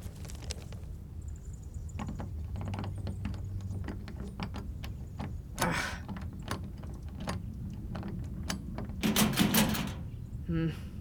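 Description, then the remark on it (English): Metal handles of doors locked from the inside rattle and clack in quick, uneven bursts, a jerky mechanical jiggling that repeats for several seconds and grows louder near the end, with faint voices murmuring underneath. “No dice on these doors. They must be locked from the inside somehow.”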